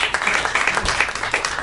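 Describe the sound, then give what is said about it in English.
An audience claps steadily for a moment after being asked to clap if they saw the film The Help, a dense patter of many hands at moderate loudness with no voices over it, sustained through the short stretch. “clap if you saw The Help.”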